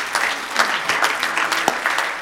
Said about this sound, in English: Will you clap your hands one more time unto the Lord?